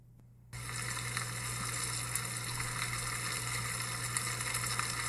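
Rain drums steadily on a roof, a dense, even hiss of countless tiny patters that starts abruptly after a brief silence, with a low hum running underneath and no voices.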